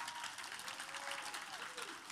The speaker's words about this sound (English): let's clap for these kids.